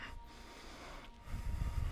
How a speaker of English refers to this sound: Begin to generate the sound of ujjayi breath. You call it throat breathing, yogic breathing, breathing that's audible, breathing that awakens our listening, shapes our listening.